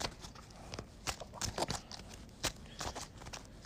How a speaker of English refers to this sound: I'm going to shuffle my deck real quick.